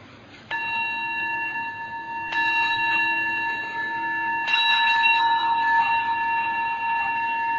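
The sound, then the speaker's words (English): A bell is struck three times at unhurried intervals before Buddhist chanting honoring the Buddha, each clear, resonant strike ringing on and layering over the fading tone of the last, with no voices. “So I'll ring the bell first.”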